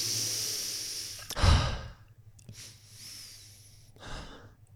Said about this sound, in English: Okay, well, all together, really big breath in through the nose and out through the mouth.